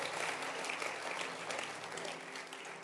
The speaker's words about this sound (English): Hey, clap your hands for Basenta Ministry, men of God and women of God.